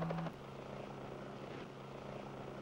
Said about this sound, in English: And here we can see a Sioux helicopter flying in the jungle in Belize in Central America.